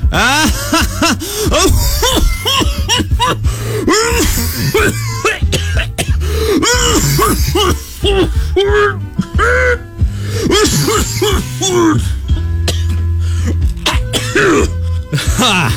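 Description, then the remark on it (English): A voice imitates a smoker's laugh: a raspy, wheezing laugh in quick rhythmic bursts that breaks down into harsh coughing and throat clearing, loud, with no other talking. “There's the smoker laugh, which is just a normal laugh that ends in coughing.”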